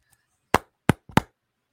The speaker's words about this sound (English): Thump that can into the microphone. Thump that can into the microphone. I need to hear it.